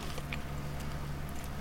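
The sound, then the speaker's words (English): Someone bites into a crunchy Nutella wafer filled with hazelnut spread with cocoa, a few faint, crackly crunches over a steady low background hiss, with no talking. “There's little, I don't know, what sort of crunchy something. Wafer filled with hazelnut spread with cocoa.”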